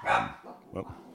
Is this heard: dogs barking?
yes